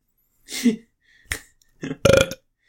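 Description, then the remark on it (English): A few loud burps made on cue, in quick succession: a low gurgling one, a short sharp one, then a longer, rougher belch, with no talking. “See? On cue. Whenever I want to. I can burp.”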